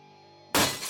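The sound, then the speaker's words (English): After a near-silent moment, window glass suddenly shatters in a loud crash as someone goes through the window at full speed into a kitchen area, its bright, crunching spray of shards sustaining to the end. There is no talking. “Through the glass.”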